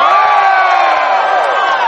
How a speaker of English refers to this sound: Woo! It's good to hear I got a bigger cheer than the cheese puff, anyway.